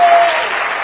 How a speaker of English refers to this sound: Are you clapping your hand for Jesus?